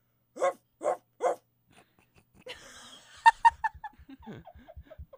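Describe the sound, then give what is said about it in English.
A person imitates a dog with three quick, evenly spaced barks, then a short pause followed by wheezy, breathy laughter and giggling. “That was not my best bark.”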